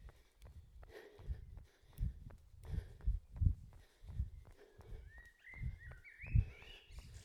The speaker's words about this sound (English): And lots of different birds still though.